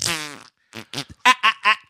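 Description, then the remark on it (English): Michael Caine farting in a movie: a long, buzzy fart rips out, then a quick string of four or five shorter sputtering bursts follows in uneven rhythm, loud and clear with no one talking. “Also, this movie somehow featured Michael Caine farting.”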